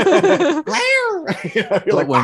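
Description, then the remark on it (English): A single drawn-out, rising-then-falling cat meow, inserted as a scary cat moment, cuts in between bursts of lively talking, loud and upfront in the mix. “Insert scary cat moment here, you know.”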